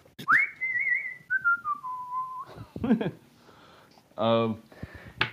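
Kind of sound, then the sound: human body sound, person whistling a tune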